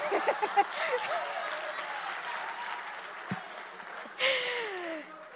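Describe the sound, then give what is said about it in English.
An audience claps steadily for the speaker for several seconds, a dense wash of hand claps that swells again near the end, with a few voices calling out over the applause. “Please do clap for me.”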